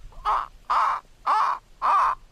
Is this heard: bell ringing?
no